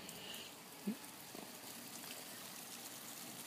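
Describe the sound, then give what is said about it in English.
Water trickles and splashes steadily throughout as it drenches grasshoppers among garden plants, a soft continuous hiss, with one slightly louder splash near the start and no talking. “I'm now going to be getting drenched by the water, just like the grasshoppers.”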